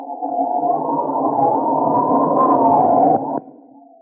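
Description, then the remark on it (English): A loud, steady howling sandstorm wind effect with a wavering, moaning pitch, sustained for about three seconds before cutting down sharply to a fainter hum. No one speaks. “Will Jericho and Frenchy survive the sandstorm?”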